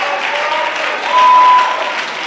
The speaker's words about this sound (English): Come on, clap your hands and give him the glory.